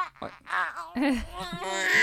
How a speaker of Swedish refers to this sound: Alltså nu saknar jag det. Det där ljudet påminner mig om första skriket på BB.